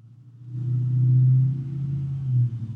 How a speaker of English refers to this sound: And that was someone on the motorcycle. So as you can see, the outdoor sound really carries into my house.